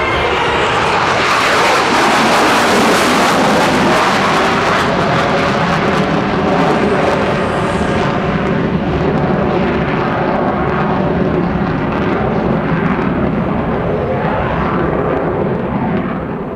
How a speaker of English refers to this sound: This plane flies 1,500 miles an hour.